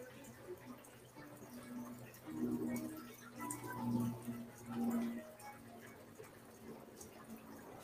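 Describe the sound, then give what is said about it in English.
Liquid pours steadily into a container, with a gurgling, slightly rising tone that swells in a few short surges before trailing off. Fairly quiet, with no talking. “I'll bring it back out here and pour it. I'll show you how I pour.”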